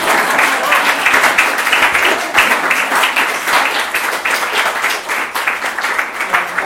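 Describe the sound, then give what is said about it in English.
Sustained conference audience applause after a keynote talk, a dense, steady patter of many hands clapping at once, loud and even throughout with no voices standing out above it. “It's okay to clap.”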